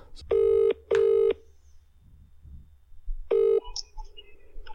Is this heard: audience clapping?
no